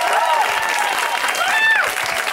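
A crowd applauds steadily, a dense, even wash of clapping with no pauses, while cheers and whoops rise above it now and then.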